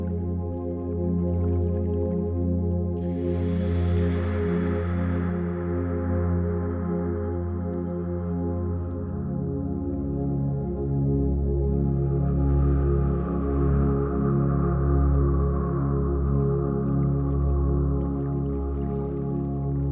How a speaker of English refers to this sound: Hear the gentle noises of the river as you sit here peacefully and quietly.